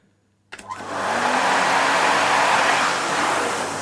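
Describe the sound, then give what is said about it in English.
After a brief silence, a vacuum cleaner (a hoover) switches on for hoovering and spins up into a loud, steady whooshing roar with a low motor hum underneath, running continuously with no talking. “Hoovering during the week, havering on a Sunday.”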